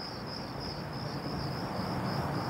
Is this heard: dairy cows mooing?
no